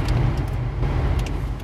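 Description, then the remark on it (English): Steady low-frequency rumble of a car in motion, heard from inside the cabin, with constant road noise and a few faint higher ticks or rattles over it. “To try to lessen the background noise of driving a car.”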